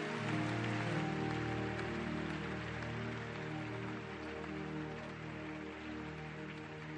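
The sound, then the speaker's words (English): An audience claps for Jesus in a dense, steady wash of applause that holds for several seconds, with low sustained tones humming underneath and no voices. “You know, as you were clapping, I saw the angels jumping up and down, excited.”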